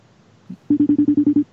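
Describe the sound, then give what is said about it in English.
A FaceTime call being dialed: a quick run of about eight short, evenly spaced electronic beeps, loud, preceded by a faint brief tap, with no one talking. “She's clearly not by her phone because she didn't pick up.”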